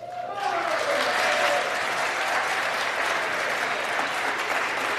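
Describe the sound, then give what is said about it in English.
Sustained, dense applause from a large crowd in the US House of Representatives chamber as Nancy Pelosi of California is elected Speaker of the House for a fourth term with 216 of 427 votes. It starts abruptly and holds at a steady, loud level as many hands clap together in a continuous wash. “Like you should probably, you know, she had people out there looking around like, who's clapping, who's putting their back into it, who's clapping them.”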